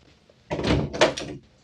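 A door at the top of the stairs swings open and then shuts, two quick woody movements in close succession, fairly loud, with no voices present.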